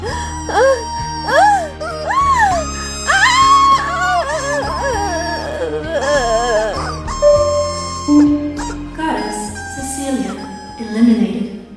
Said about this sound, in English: That was a screaming chicken toy, in case you had it on your bingo card.